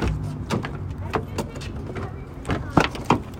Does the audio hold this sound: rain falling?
no